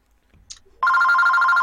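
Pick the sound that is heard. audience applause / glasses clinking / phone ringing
phone ringing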